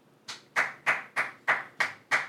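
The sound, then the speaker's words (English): Seven sharp hand claps at a steady, even pace, each one crisp with a brief ringing decay, and no voices in between. “It's the same velocity clap.”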